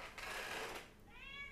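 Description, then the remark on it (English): A female cat lets out a quiet, drawn-out meow, starting breathy and rough before turning into a clearer, rising tonal cry. It sounds faint, with no talking. “Give her attention, she keeps meowing.”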